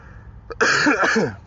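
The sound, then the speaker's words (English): A brief catch in the throat, then a loud, raspy burst of coughing and throat clearing lasting about a second, with no speech around it, from a person battling seasonal allergies. “Folks, I want to apologize with the coughing here on the show. I'm still battling some seasonal allergies.”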